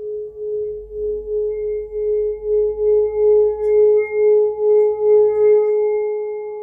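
A singing bowl rings with a steady, sustained mid-pitched tone and faint higher overtones, swelling and wobbling in a regular pulse throughout, over a soft low hum, with no voices.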